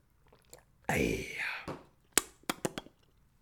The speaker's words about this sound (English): Quick sip of water, folks. Water break, boss. Don't mind me, boss.